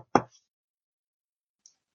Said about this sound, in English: And I'm a very, very sound sleeper, so I wouldn't hear your light, gentle knock. He'll give it a minute or so, listen at the door to see if he hears anything, and then give it a little bit more of a...